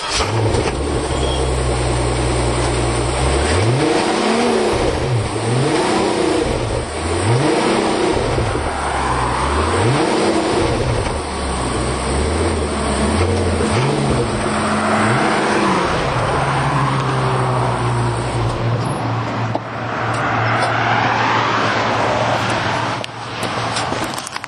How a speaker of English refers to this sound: So that was the car from the outside.